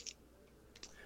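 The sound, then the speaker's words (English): Six-sided dice for a tabletop game are picked up from a desk and handled: two quick, light plastic clicks, nearly a second apart, against a quiet room with no one talking. “I'll point my camera at my desk here, and I'll grab some dice, and we'll take a quick look-see.”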